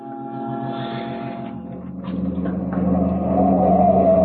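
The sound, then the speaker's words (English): A car engine drones steadily with a low, pulsing hum, growing gradually louder and fuller as the vehicle drives on, with no voices present. “Heading south on Claremont, I picked up a trailing car in my rearview mirror.”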